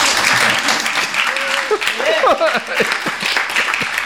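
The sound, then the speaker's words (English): An audience applauds steadily for author Tom Drury for about four seconds, a dense, loud patter of many hands, with a few voices and brief whoops rising over the clapping partway through. “But right now we're here for Tom Drury. Applaud.”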